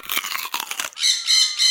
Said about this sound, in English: What's that noise? Asked the robots. Look up there! It's parrots!